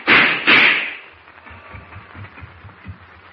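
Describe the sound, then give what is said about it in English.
Two loud, sharp pistol shots fired by Deutsch, about half a second apart, then fade into a dull, low rumble with no voices. “You wasted bullets, Deutsch.”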